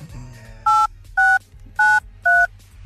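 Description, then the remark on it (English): Four loud touch-tone dialing beeps from a phone keypad as a person calls someone's phone number, each short and evenly spaced about half a second apart, over a low background murmur. “I am calling them immediately.”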